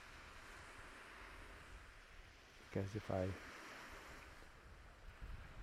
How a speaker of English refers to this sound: If I whisper, I need to pull back really far away from the waves. And right now, I'm about maybe 100 meters or 100 yards away from the waves. I've also learned not to move too close,